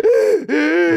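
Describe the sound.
A person imitates the strained gasping breath they made at night with mouth agape, struggling for air: two drawn-out wheezy pulls of air in quick succession, loud, with a brief break between them and no talking.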